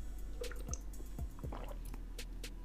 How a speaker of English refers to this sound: Let me get another sip of water.